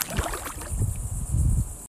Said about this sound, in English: Oh, what's that sound? It's a lawn guy, which means the tide must be coming in and the waves are dying down. Way to man that mower, buddy. Whack those weeds.